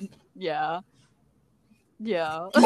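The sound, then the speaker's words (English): A pug named Yoda barks twice, two loud, drawn-out, whiny barks about a second and a half apart, followed by a short burst of noise. “I'm sorry, my dog is”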